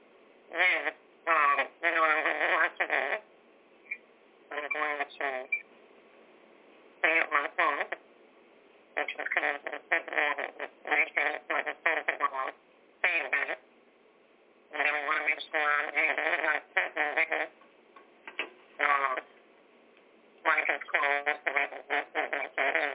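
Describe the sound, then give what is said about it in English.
A bad phone or radio line, thin and crackly, with a steady hiss under choppy, garbled bursts of a voice that keep cutting in and out. “Yeah, we got a little static here.”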